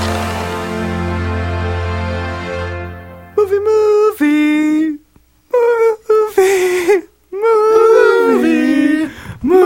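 A steady droning tone gives way to several loud bursts of wavering, drawn-out howls that rise and fall in pitch, separated by short pauses.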